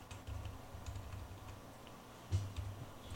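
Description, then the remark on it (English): A wind-up jack-in-the-box ticks away with quick, uneven mechanical clicks in rapid bursts, fairly quiet, with one sharper clack near the end and no voices. “I hear the jingling of a jack-in-the-box.”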